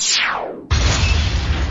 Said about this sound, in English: The enemy ship fires its main cannon.